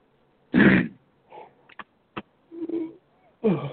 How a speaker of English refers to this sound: I am so sorry about this yawning, folks.